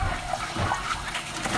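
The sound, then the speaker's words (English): Water runs steadily from a tap into a container, a continuous rushing splash with shifting bubbly tones, moderately loud, with no voices. “Okay, come fill it up with water.”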